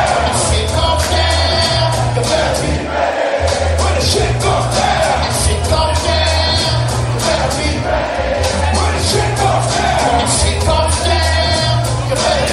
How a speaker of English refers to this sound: Listen to the crowd.